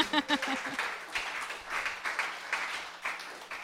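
An audience claps steadily for a few seconds, a dense patter of many hands, with a brief burst of voices or whoops at the start.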